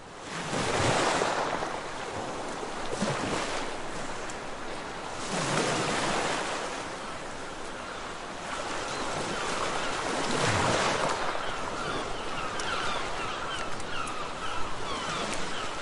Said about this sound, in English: I hear only the sea. Only the sea.